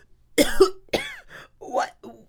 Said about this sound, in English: Tommy and Annika got so much flour in their mouths it made them cough.